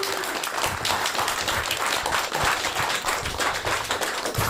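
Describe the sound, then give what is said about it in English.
An audience applauds steadily as an extra guest is brought up at the wrap-up of a show, a dense wash of many hands clapping at once, loud and sustained without a break for the whole stretch. “Round of applause.”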